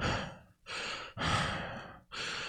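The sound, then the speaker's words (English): A person imitates heavy breathing: four loud, airy breaths in a steady in-and-out rhythm, with brief pauses between them and no talking. “And all he's doing is just breathing heavily.”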